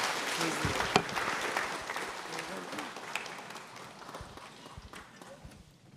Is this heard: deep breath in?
no